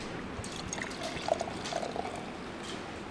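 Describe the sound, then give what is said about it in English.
Pineapple mead being poured into a big cup during a storm, a steady splash and gurgle lasting a few seconds, with small bubbling glugs rising in the middle. No one speaks. “Pineapple mead being poured.”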